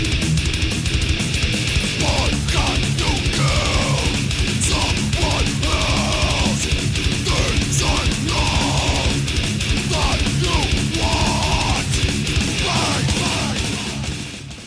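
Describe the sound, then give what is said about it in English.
A dense, pounding industrial thrash metal track with heavy distorted guitars, a bit of synth and relentless drums, a growled vocal barking short phrases over the top, loud throughout before easing slightly at the end. “Yeah, and then they start showing their sort of industrial influences aesthetically, I guess, and a bit of synth.”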